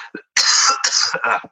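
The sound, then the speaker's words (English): A person coughs, a short burst followed by a couple of rough, throaty coughs in quick succession, with a brief throat-clearing quality at the end. “Hang on 1 second and cough.”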